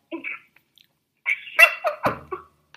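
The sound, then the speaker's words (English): Mouth noises of someone chewing snacks: a short burst, a pause, then a cluster of crunchy, smacking bites with soft wet clicks, loud. “Another thing, and I'm sorry, I went and got me some snacks. I'm chewing.”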